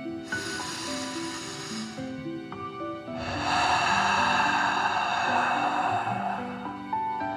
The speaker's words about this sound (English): First, let's take 3 deep dragon breaths. Breathe in through your nose, filling up your chest and belly, and then out, pretending you are breathing fire. Ready? Okay, deep breath in and out.